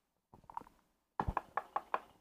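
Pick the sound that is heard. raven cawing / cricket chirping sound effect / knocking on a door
knocking on a door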